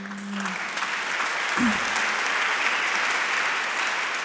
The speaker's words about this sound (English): You have to stop clapping, okay? Because it's making me really nervous.